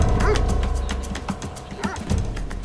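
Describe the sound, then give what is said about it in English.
Guard dogs, walked by guards along the perimeter of a factory, bark and yip in quick, irregular bursts over a steady low rumble, loud, with several overlapping calls and no clear talk. “There are half a dozen or so guards walking the perimeter with dogs.”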